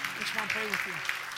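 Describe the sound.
A crowd claps steadily in a dense, even patter, with a man's voice talking over the applause throughout this brief moment, clapping for people coming forward to be prayed with.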